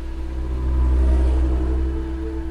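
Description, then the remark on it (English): A jeep engine rumbles steadily, swelling slightly in the middle as it revs and pulls away, heading towards Lake Tanganyika, with a low droning hum throughout and no talking. “I climb into his jeep, and we head towards Lake Tanganyika.”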